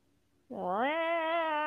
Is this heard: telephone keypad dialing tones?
no